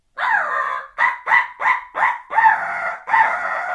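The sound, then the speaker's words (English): A crow call blown by a turkey hunter in a loud, raspy series of caws: one long opening caw, four quick clipped ones, then two longer drawn-out caws, with no voices. “crow call is something I use when I know turkeys are in the area”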